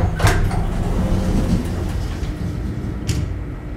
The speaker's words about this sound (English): After what seemed like a full minute, the familiar whirring noise started up again. The metal doors creaked, then began to slide apart.